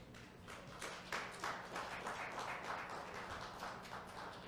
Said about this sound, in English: I thought the men here will clap for the women here.